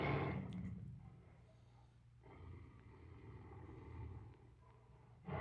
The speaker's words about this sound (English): It's a tigress. A tigress? Yes.